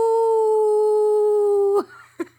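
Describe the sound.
A wolf howls once, loud, holding a steady pitch for nearly two seconds before it breaks off and drops, followed by a short yip; wolves running the hills of Howling Fjord across a snow-covered plain.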